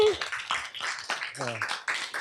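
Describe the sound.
A crowd applauds, a steady wash of overlapping claps that runs the whole time, with a voice briefly rising over the clapping partway through.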